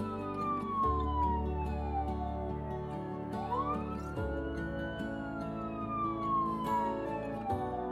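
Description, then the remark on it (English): The sirens of three police cars wail at once, their pitches sweeping up and down and overlapping, loud over a low engine rumble, with no one speaking. “As he exits, he's confronted by 3 police cars and 6 officers pointing guns at him.”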